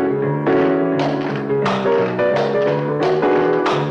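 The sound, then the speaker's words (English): Firm knocks on the wooden top of a piano set the tempo, keeping a steady beat, about six or seven hits spaced evenly, each leaving a warm, ringing resonance behind it. “tries setting the tempo again by hitting the top of the piano.”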